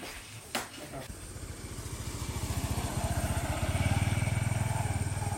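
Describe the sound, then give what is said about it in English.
A motorcycle engine putters with a steady, rapid rhythm, growing louder as it approaches and easing off slightly at the end, over a busy outdoor background. “That's the main transportation, is a motorcycle.”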